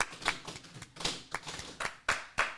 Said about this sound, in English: Round of applause for the people in the studio.